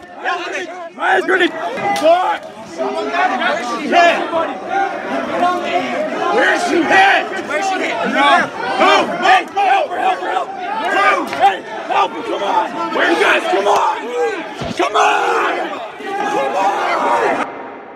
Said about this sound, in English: There is video that appears to show the incident where it shows a crowd of people inside the Capitol yelling. There's seemingly some confusion and chaos, and then you hear a shot fired off.